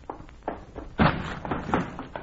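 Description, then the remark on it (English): A door is banged repeatedly: a run of heavy, irregular thuds, with one especially loud slam near the middle, with no voices. “That's the door.”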